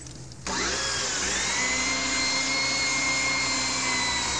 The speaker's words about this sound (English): How much farther? About a foot. I'll just pray this drill doesn't break.